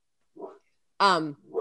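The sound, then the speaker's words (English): A dog barks: a soft short yip, then a loud, sharp bark with a falling pitch, followed by the start of another bark. “Sorry, the dog is barking.”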